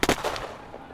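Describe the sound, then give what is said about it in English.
A quick burst of sharp popping reports, gunshots from a gunfight heard by a driver in an ambulance a couple of blocks down the road: two close pops followed by a couple more, each fading into a dull ambient wash. “And I drove down a couple of blocks, and I started hearing this popping sound.”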